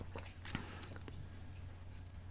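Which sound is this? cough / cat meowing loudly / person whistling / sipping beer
sipping beer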